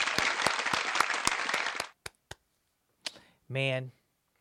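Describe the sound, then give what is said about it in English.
A burst of audience applause with sharp claps, asked for in tribute to the late Gilbert Gottfried, fills the first two seconds, then trails off into a few isolated claps, followed by a brief voiced sound at the end. “Could we get an applause for that?”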